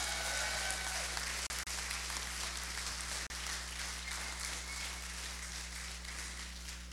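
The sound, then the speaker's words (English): A large audience applauds and cheers for a man's rededication of his life to Christ, a dense, steady wash of clapping with scattered whoops, sustained throughout with a low hum underneath and two brief dropouts. “Just applaud, cheer, whatever.”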